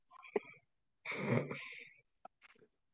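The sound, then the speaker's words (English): A single loud sneeze from someone with a cold bursts out after a short sharp intake, followed by a few faint breaths and small mouth noises in otherwise quiet surroundings. “I'm going to have to apologize now that, like, occasionally we'll get jump scared by me sneezing if my mic picks it up.”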